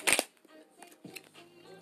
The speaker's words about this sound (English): Okay. I'm gonna just do about two more shuffles.